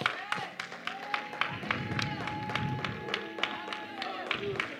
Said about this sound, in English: Come on, let's give the Lord a hand clap of praise.